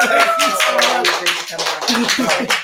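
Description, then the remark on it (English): Loud, steady applause from an audience at the live show Holler Live, dense clapping filling the whole stretch, with voices calling out and talking over it. “Can we give him one more round of applause, y'all?”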